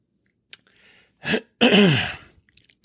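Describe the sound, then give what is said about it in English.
A soft click and a faint, hissing slurp of Freedom Hill coffee being sipped, followed by a breathy exhale and a loud, rough throat-clearing sigh, with no talking. “So pardon me for 1 second while I take a sip of my beverage.”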